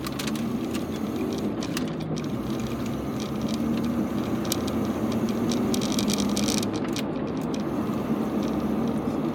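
Steady low rumble of a moving car heard from inside, with constant road and engine drone and occasional faint clicks and ticks, no one speaking.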